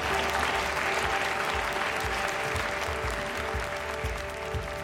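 The audience in the hearing room of Senator McCarthy's committee breaks into sustained, loud applause after Welch's rebuke of McCarthy, dense clapping filling the space steadily for several seconds with no one speaking over it.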